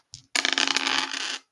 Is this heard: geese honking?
no